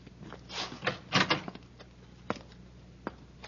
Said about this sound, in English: Hey, I think I hear somebody in this room, sir. I'll open the door.